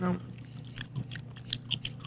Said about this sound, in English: Oh, chew it.